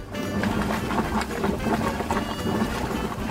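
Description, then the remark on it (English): Water boils at a steady roll, a dense churning of bubbles that pops and gurgles continuously without pause, fairly loud and even throughout, with no voices. “The answer is water boiling.”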